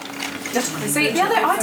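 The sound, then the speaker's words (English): Gin free-poured into a glass: a short, steady trickling splash whose pitch rises slightly as the glass fills, heard under faint talking for about a second and a half. “Particularly, I mean, when he's on the bar and does free pour, like this one.”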